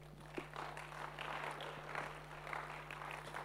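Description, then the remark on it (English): An audience claps together in a steady wash of applause for several seconds, moderately loud and without speech, with a low constant hum underneath, giving the Lord a clap after a healing prayer. “Why don't we give the Lord a clap?”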